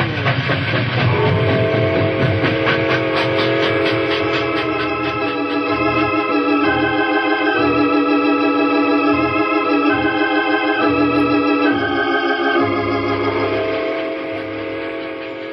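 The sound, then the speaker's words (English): A locomotive pulls a train away down a hill, loud, with a sustained whistle-like tone over a steady rhythmic chugging that builds and then begins to fade. No one speaks. “A locomotive can outrun a horse any day. We'll be down the hill and gone before they can get started.”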